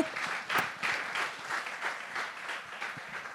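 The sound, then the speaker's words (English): A room full of people claps steadily for a few seconds, a dense wash of many hands that swells slightly and holds without fading, no voices standing out. “Give her a clap.”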